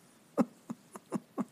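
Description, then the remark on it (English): A pet named Bodhi gnaws on a chew toy, making five short, moist crunching bites at an uneven pace, fairly quiet, with no talking. “Sorry, Bodhi is eating a chew toy in the background here, but that's what needs to happen now.”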